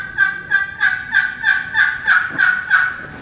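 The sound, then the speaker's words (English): A turkey call produces a steady series of about nine raspy yelping notes, evenly spaced and fairly loud, each with a bright, harmonic-rich pitch, with no talking. “But when you get one, take the call, hold it, don't touch the sideboard, and move it and see where the second note comes from.”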